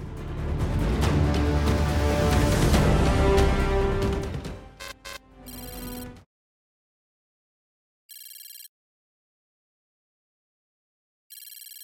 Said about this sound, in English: The world was consumed by fire and fury, but in the end all that lingered was the melancholic chime of a shattered clock.